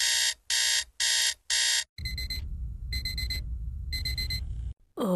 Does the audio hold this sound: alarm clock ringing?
yes